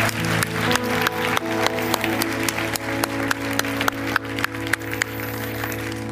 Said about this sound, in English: Can we give the Lord a clap of praise this morning?